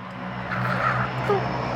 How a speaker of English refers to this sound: I think that our plane has arrived. Our chariot has arrived. Our chariot has arrived.